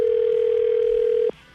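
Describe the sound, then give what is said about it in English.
A telephone ringback tone plays as one steady, fairly loud electronic beep lasting over a second, then cuts off abruptly, leaving a faint background hiss. “It's ringing.”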